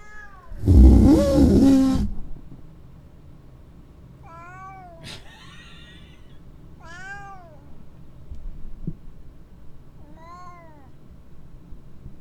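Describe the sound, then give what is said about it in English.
A cat at a house lets out a loud, drawn-out yowl, followed by several shorter, rising-and-falling meows spaced a couple of seconds apart, with no talking. “The cat will not stop now. Last night it was loud.”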